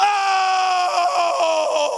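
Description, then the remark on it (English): A loud, sustained guttural scream from a single voice, held steadily for about two seconds with no other sounds around it, as though someone is acting out the cry of Moses before the Lord. “And before the Lord, it comes out of his spirit, a guttural scream.”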